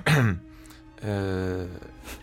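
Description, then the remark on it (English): A sharp cough bursts out, followed after a brief pause by a longer, strained, voiced throat sound, like someone hacking to clear their throat. No talking. “you see, you don't give me water and I stop coughing.”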